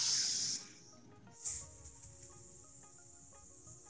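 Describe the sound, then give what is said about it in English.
A breathy hissing exhale through the teeth after a nasal inhale, a snake-breath exercise for anger release, fading after about half a second, then a second sharp hiss that trails off softly over a faint, steady background hum. “One of them is the snake breath, and that's just breathing in through the nose and then letting out a s.”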